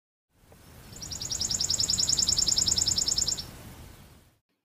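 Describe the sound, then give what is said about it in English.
A chipping sparrow sings one dry, rapid trill of evenly spaced, high chips lasting about three seconds, clear, over a faint outdoor hiss with no voices. “Some examples of birds who gather their food this way are the chipping sparrow.”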